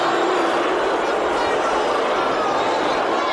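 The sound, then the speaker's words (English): A big crowd roars together in a dense, steady wall of noise that stays loud and unbroken for the whole few seconds, with a murmur of many voices blended into it. “A crowd. Yeah, just a big crowd.”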